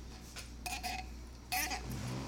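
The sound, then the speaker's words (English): A glass bottle is handled and opened: two bright bursts of clinking and rattling glass, the second sharper and louder, over a steady low hum with faint voices. “Opening the bottle that you asked me to open.”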